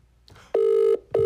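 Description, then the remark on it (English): A phone line ringing on an outgoing call: two loud, steady electronic ring tones in quick succession, the second cut off, with no voices. “It went from calling to ringing, so we thought we were getting him.”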